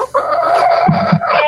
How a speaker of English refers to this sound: Sounds like the chicken's trying to start a car.